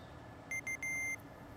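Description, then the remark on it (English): A phone alarm set for 10 a.m. beeps three times in quick succession, two short tones followed by a longer one, bright and electronic over a quiet background hum. “Phoebe had set her phone alarm for 10 a.m.”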